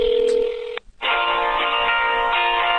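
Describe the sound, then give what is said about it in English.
A steady electronic telephone keypad tone sounds for under a second as someone dials a phone line, breaks off briefly, then a buzzy, harmonic line tone fills the rest, loud with no one talking. “I'm dialing the line.”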